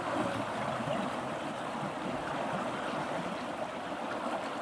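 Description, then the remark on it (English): Steady rushing river water flows continuously over rock, a dense, fairly loud wash of churning sound with no voices and no breaks. “Feel the river”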